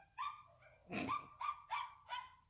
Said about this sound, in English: It's annoying. It's an angry sounding doggy.